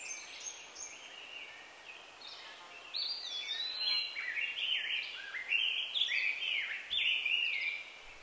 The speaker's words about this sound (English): Ah, those are birds, right? Yeah, dude. You've seen birds before. I've read about them, seen pictures of them. Never seen or heard one before I came to Earth.